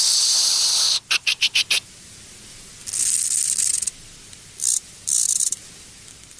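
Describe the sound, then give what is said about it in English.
A conehead bush-cricket's high, hissing song: a steady buzz, then a quick run of five sharp pulses as its song changes gear, followed by longer hissing bursts separated by short pauses, with no voices. “In the wild, a soft, gentle hissing noise, and then the gear change, something like...”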